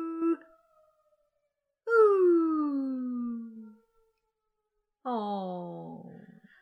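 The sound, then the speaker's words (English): A person imitates a dog's howl with two long, sliding vocal wails separated by a pause, each falling in pitch, fairly loud, preceded by a brief vocal sound. “I feel like I should howl like a dog.”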